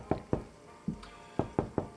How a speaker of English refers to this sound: All of a sudden, there's a knock on the door.